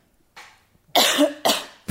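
coughing

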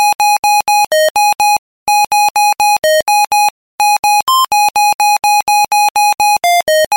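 mobile phone ringtone melody

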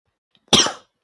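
coughing

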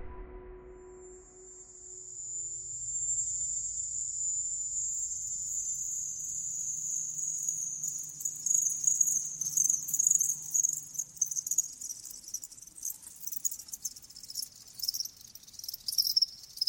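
chirping crickets

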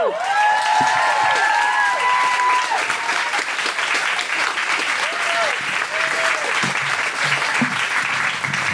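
audience applause

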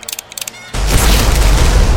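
gunshot

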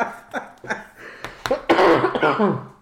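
coughing

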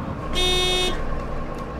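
school bus horn honking

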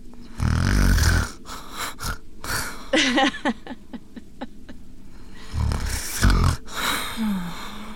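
snoring

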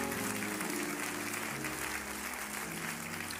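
audience clapping hands

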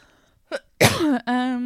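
cough into the microphone

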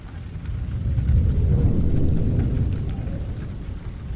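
pouring rain with thunder

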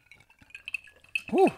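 glasses clinking

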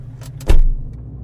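car engine idling

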